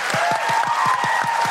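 Dense, steady audience applause for comedians Naomi Evans, Lucy Cooke and Felicity Ward on a comedy show fills the whole moment at an even, fairly loud level, with a regular low thumping pulse running beneath the clapping. No one speaks.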